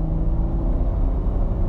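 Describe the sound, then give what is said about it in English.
A car engine roars loudly and continuously from inside the vehicle as the car accelerates hard, a deep, steady rumble with a droning hum that holds strong throughout, with no voices. “This car has a 0-60 timer and my best time was like 7-something seconds, like really low 7 seconds.”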